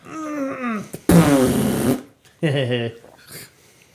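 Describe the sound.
A loud, sputtering fart from a baby girl, heard over a baby monitor, lasts about a second, with voices before and after it.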